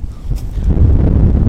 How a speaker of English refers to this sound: it's windy, isn't it?